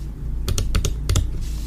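Crisp keystrokes on a computer keyboard, six clicks in two quick clusters of paired taps over a steady low hum, with no voices.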